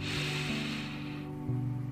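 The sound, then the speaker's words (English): A long, airy deep breath in, taken during a breathing exercise, hisses steadily for about a second, then fades out, with a soft, steady low musical drone sustained underneath throughout. “Let's start with taking a deep breath in.”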